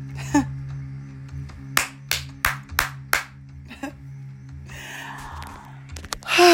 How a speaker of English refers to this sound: if you don't clap for yourself, clap and clap again. But let's really hear it this time.